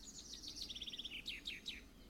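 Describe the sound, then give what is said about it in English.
Birds chirp and call: a quick run of high, evenly spaced trilling notes, then three sharp downward-sweeping chirps, fairly soft and with no voices present. “And I swear there's at least two of them calling me a geezer.”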